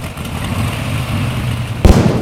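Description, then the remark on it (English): An engine being started rumbles and sputters unevenly, then a single sharp, loud backfire pops near the end before the rough running continues. “It sounds like the intake manifold's shot.”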